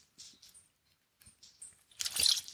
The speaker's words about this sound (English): Sorry about that, guys. Had a little bit of a dry throat. Had to take a sip of the water.